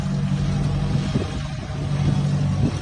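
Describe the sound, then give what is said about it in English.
A tractor named Aggie, fitted with a cab adapted from an Ellis Chalmers XT170, runs steadily with a deep, low rumbling drone, fairly loud, holding an even pitch throughout with no voices over it. A couple is driving it 3,910 miles from Nebraska to Alaska. “That's how many miles they plan to travel in this. The tractor itself was about $3,500.”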